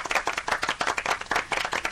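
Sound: applause sound effect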